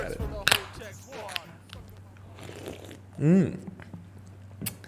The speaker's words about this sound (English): That, my friends, was the sound of a couple crisp brews being cracked, and this is the sound of your favorite podcast, The Rookie Show.